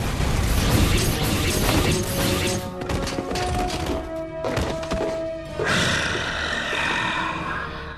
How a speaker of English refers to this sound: Now, that initial explosion was created by a flash charge on a fishing rod. That's cool. They poked it out the doorway and ignited it.